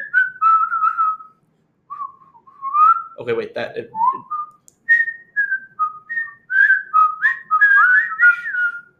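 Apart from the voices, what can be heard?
person whistling a tune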